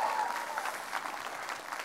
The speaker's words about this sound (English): If you believe you're more than a conqueror, give him a great big clap offering.